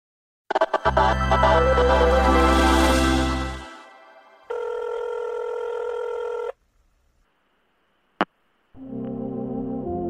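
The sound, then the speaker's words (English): A telephone rings before a voicemail greeting, with loud, buzzy electronic tones: a long low ring, then a higher steady tone, a sharp click, and another tone starting. No one speaks. “we can't come to the phone right now because we're taking a break for the holidays.”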